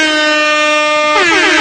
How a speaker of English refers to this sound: That's our Avatar watch horn.